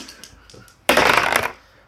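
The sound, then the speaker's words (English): A couple of faint light clicks, then two dice tumble with a loud rattling clatter lasting about half a second before settling into quiet, showing a total of four. “Two dice. Two dice, yep.”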